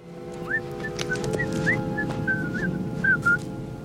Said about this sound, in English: So I came up with this theme that used the Camptown Races, which was being whistled throughout the piece. John took this creative cue from the character of Richard, who's whistling it on the beach before burying Harry up to his head in the sand.